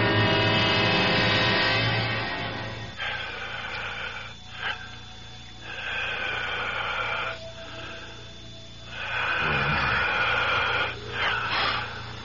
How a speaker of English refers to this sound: It sounds like the whole room is breathing. I can hear it breathing.